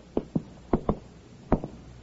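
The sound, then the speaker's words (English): A man knocks on the door of apartment number 7 in a modest downtown apartment house in a West Coast city, late afternoon: three quick pairs, knock-knock, a pause, then knock-knock again, twice more; firm, hollow raps, with no voices around them. “He walks down the hall to the door of apartment number 7. He knocks.”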